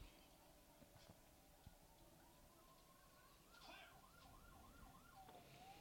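An ambulance siren sounds over rumbling traffic noise, holding a steady tone before breaking into quick, rapid yelping warbles that grow louder as it passes.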